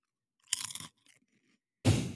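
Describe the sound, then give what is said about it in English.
Loud crunching of a tomato-flavoured potato chip being eaten: a sharp crackling bite, a pause with faint chewing clicks, then another burst of crunching. No one speaks. “Can you hear me crunching?”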